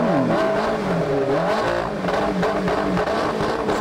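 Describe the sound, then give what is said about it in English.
The new engine of a Zamboni ice resurfacer revs loudly and continuously, its pitch rising and falling in sweeping surges, with no voices over it. “We're back, and the Zamboni got a new engine. Let's listen to that thing purr.”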